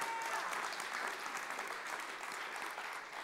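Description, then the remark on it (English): An audience at a sermon claps steadily for a few seconds, a dense, even wash of hand claps with no voices standing out. “That would be a great time for a clap right there.”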